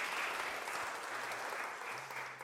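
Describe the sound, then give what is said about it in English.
The audience at Connection Church claps during its first ever child dedication service, a dense, continuous patter of many hands at even loudness throughout, with no voices breaking through. “It's okay to clap in our church.”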